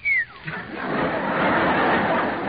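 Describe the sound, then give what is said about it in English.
A quick mouth whistle slides downward in pitch, then gives way to a broad wash of crowd laughter and chatter that carries on steadily. “I remember hearing a whistle.”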